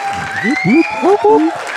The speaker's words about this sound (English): We've got some applause.